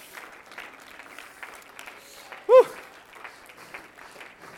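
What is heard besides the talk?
audience clapping and shouting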